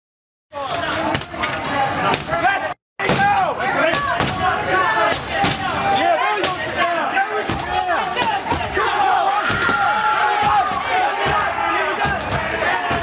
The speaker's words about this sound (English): So protesters are at the doors with glass, and just as they're beginning to break through...